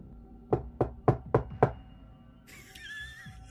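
Five firm foley knocks on a door in an even, steady rhythm, clear, followed by a brief high, wavering squeal as the knocking stops.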